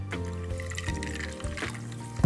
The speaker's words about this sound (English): For added drama, pour the club soda from a little bit of a height, like Tom Cruise did in Cocktail.